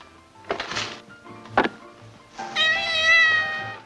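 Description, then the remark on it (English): A cat meows insistently for food, a short cry followed by a sharp knock, then a longer, drawn-out wavering meow, with faint household clatter and no talking. Cat food is being opened for it. “Don't want you not to have your favorite kind of cat food.”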